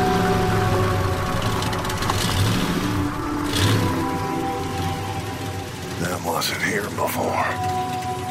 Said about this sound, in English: Those were the words my father uttered as his stuttering beast of a pickup truck came to a stop on the side of what was once an empty plain.